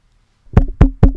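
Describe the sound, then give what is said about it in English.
Three firm knocks on a door, evenly spaced in quick succession, fairly loud with a woody, resonant thump after brief silence. “Knock, knock, knock. That's me coming in.”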